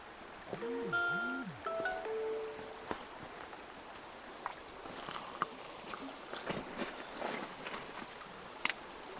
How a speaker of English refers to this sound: What sort of feelings do you get when you listen to the sound of the river?